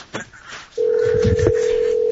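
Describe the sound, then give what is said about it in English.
A phone call connects: a few soft clicks and low rustling, then a steady, loud electronic ringing tone starts abruptly and holds unbroken to the end. “Okay, we're going. Connecting.”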